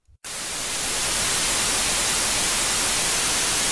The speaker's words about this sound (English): So, yeah, we'll chuck in, here's our little bit of white noise.